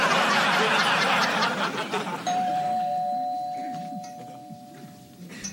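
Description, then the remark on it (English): A single doorbell chime, rung by Steve, rings out clearly over a burst of studio laughter, its steady tone holding for a few seconds as the laughter fades. “So Steve rings the doorbell, takes off his hat, revealing that it is Steve himself.”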